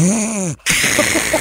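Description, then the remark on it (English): A person imitates a snore as a qualifier entry in a radio snoring contest: a voiced, buzzy rumble that rises and falls, a brief pause, then a breathy, raspy intake of air, all without any spoken words. “Let's hear those snores.”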